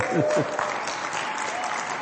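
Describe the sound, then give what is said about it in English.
An audience claps together in a dense, steady burst of applause, with a few voices rising briefly underneath at the start before the clapping carries on alone. “Let's clap.”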